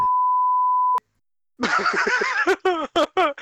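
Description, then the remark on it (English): A steady, pure censor beep holds for about a second, cuts off abruptly, and after a short silence bursts of loud laughter follow. “No, wait, you're gonna just beep just like the whole thing.”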